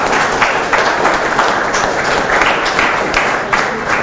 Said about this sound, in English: I also want to say thank you very much to the UJ students who participated and the AYGS last year. We are here because of them. Where are they? Let's clap for them.